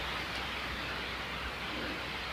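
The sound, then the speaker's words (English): A steady, unbroken rush of a flowing stream during a walk in the dark, a soft hiss with a low burble underneath that stays at an even level throughout, with no voices or other sounds. “Can you hear the stream?”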